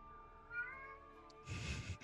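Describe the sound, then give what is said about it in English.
A drawn-out, wavering meow, most likely a person imitating a cat, ends in a loud breathy hiss. It is moderately loud, with no other talking. “The hag sends her cat. Meow.”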